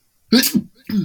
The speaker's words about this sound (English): Oh, I'm going to sneeze again.